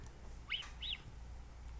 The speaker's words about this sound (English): Here's a whistling mountain lion.